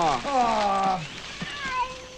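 A cat gives a drawn-out, falling meow lasting about a second, clear, followed by fainter rustling and murmured background noise.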